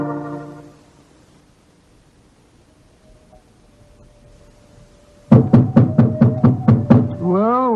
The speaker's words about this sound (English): Told us this was the elephant house. Why in thunder doesn't the keeper open the door? I imagine because his mind is preoccupied with music. Knock again, old fellow, will you? He heard us that time.